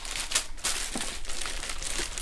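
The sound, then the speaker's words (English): Rustling and crinkling of paper as a printmaking design of a rolling ocean wave is pulled out and handled in a printmaking studio, a steady papery texture with a few sharper crackles and no voices. “she pulled out a printmaking design she had made of a rolling ocean wave.”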